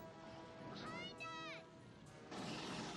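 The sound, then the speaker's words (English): In a film scene, shrill, wavering cries give way to a big explosion on the platform the Queen is on as she tosses a weapons belt; it bursts in near the end and rolls on as a sustained, roaring blast of noise, fairly quiet overall. “Now there's a shot here where the platform the Queen is on, there's a big explosion when she tosses these her weapons belt here, and the Queen, when it falls, is actually quarter scale miniature, in which we use a double mirror setup.”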